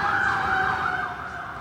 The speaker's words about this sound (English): The alarm's going by right now. There you go.